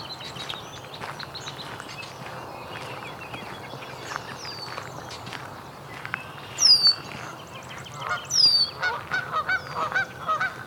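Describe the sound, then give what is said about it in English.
Canada geese on a pond honk in a series of loud, repeated calls over a busy background of chirping birds, including many red-winged blackbirds, the honks coming in bursts toward the end. “Canada geese in the pond here.”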